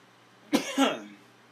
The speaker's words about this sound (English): Sorry about that, friends. Not trying to cough in your face there, friends. Just kind of caught me off guard. I wasn't expecting that.